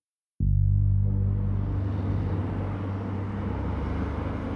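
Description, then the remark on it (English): A dense roar of freeway traffic on California's Corona Del Mar freeway cuts in abruptly, with a deep engine rumble beneath a steady wash of tire and wind noise that stays loud and constant throughout, with no voices. “Dennis Huber parks his car on the side of California's Corona Del Mar freeway.”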